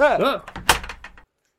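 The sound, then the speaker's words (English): A door creaks on its hinges, swings shut with a solid bang, and is followed by a quick run of metallic clicks like a lock being turned, fairly loud: the door of a writer's room being shut and locked behind two people pushed inside. “The duo are escorted into the writer's room and pushed in with the door locked behind them.”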